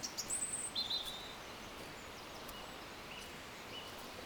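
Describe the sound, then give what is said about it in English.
Birds sing outdoors: a few quick, high-pitched chirps and whistles in the first second, fairly faint, then only soft outdoor ambience with an occasional tweet. “What can I convey to you that these birds don't convey 100,000 times better?”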